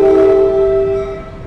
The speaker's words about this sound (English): Knock on wood, it rarely ever gets crowded. It's not like the LIRR is always crowded. It's Long Island. So this train, it's only once an hour. Usually I'm inside and not always outside, so you can't really hear it anyways.